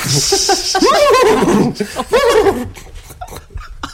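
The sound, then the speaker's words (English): A person loudly imitates a horse whinny, a wavering, trilling vocal neigh lasting about two seconds, trailing off into breathy chuckles and scattered clicks. “I'd play the part of the horse.”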